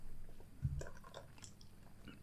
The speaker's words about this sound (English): Oh, dropping dice over here.